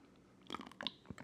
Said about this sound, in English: Sorry, I had a drink of my water.